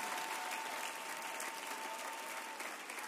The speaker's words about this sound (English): We ought to give my mom a hand of applause right now.